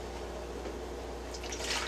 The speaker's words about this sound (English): So we take the one bottle. And we are going to pour half into here.